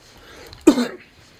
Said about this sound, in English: No, I'm just waiting for whoever has cancer there to be done coughing. Me coughing. Sorry about that.